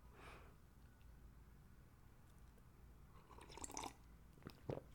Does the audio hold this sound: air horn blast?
no